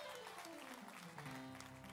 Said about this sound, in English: Come on, y'all, clap your hands.